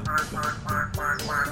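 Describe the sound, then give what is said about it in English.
A parrot squawks loudly and close by, giving five harsh, raspy calls in a quick, steady rhythm with no one talking over them. “This moment is entitled, Attempting to Record When a Very Obnoxious Parrot is Nearby.”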